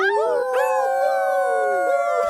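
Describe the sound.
Several voices howl together like a pack of wolves, long wavering wails overlapping loudly, sustained through the whole moment with a taunting, playful edge.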